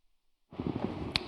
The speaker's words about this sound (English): Excuse me, folks, let me cough for a second.